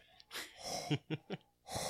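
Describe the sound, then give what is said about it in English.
A person with head lowered imitates a dog's open-mouthed panting: a breathy rush, then three quick rhythmic huffs, and another long exhale, moderately loud with no speech. “We would do this impression of here where we would, like, kind of, like, lower our head and, like, open our mouth and just, like, breathe, like... And just, like, stick as your face and just like he would.”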